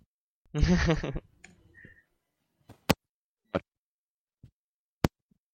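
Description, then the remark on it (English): A brief snatch of voice cuts off abruptly as a speaker's audio breaks up during a group call, followed by near silence broken by a few sharp, isolated clicks and pops, like a call connection dropping in and out. “Someone's breaking up.”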